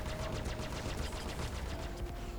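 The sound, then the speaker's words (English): Rapid, sustained laser cannon fire: a dense stream of repeating zaps and bursts, steady for a couple of seconds, with a faint electronic hum running underneath and no voices. “She wasn't even sure her bearing laser cannons would fire. Bound to this course, she inhaled and opened fire.”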